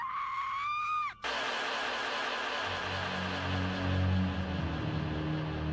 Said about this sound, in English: They ignored the screams that echoed through the woods that night.